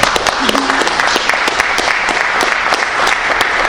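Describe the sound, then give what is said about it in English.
A crowd of people claps steadily in applause for a presentation, a dense, sustained patter of many hands that stays loud and even throughout, with no voices standing out above it. “I think that everybody deserves a round of applause for the great presentation.”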